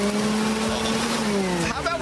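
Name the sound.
vacuum cleaner running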